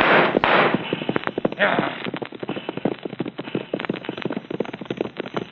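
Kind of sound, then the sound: sound effect, gunshots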